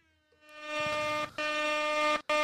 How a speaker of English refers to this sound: All right, Airhorn.